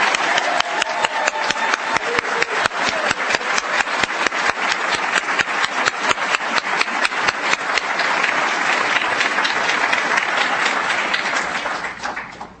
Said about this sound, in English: Let's have a big round of applause for these folks.